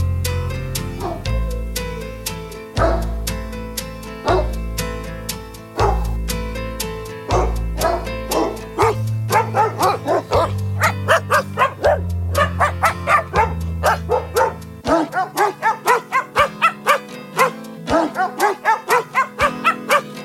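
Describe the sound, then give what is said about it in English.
Sampled dog barks are pitched and sequenced to play the carol Carol of the Bells over a steady synth backing, a pack of barking dogs whose yips come in quick rhythmic runs that grow busier and denser toward the end. “Living proof that people will buy anything if it involves a cute puppy, there's also the album …, featuring 12 holiday tracks sung by a pack of barking dogs.”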